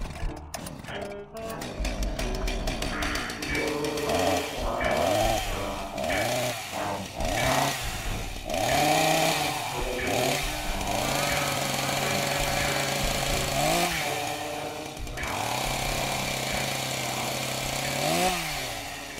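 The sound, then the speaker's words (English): A chainsaw roars loudly, its engine revving up and down in repeated surges for about twenty seconds without a break. “Imagine a Big Bird just shows up to your door with like a chainsaw.”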